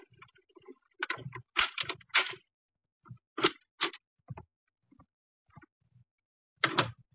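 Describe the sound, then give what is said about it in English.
A key is inserted and worked into an apartment door lock: an irregular run of sharp metallic clicks and scraping rattles, a few louder bursts among quieter ticks, with no voices. “Then we heard muffled footsteps coming down the hall and a key inserted in the lock of the apartment door.”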